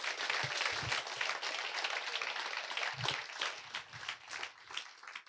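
A church audience applauds steadily after a prayer, for about five seconds, a dense wash of many hands clapping with a few sharper individual claps standing out, fading slightly toward the end.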